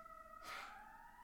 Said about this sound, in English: Let's just let the police siren go past, okay?